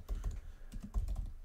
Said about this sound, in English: I'm typing it in again.